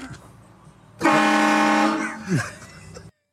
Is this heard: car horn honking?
yes